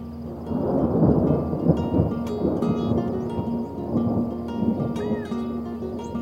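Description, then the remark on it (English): A monsoon thunderstorm in Arizona, with deep, rolling thunder rumbling steadily over a dense wash of falling rain, loud, with the rumble swelling and easing across the few seconds. “Longtime residents know that extreme temperatures bring our monsoon rains.”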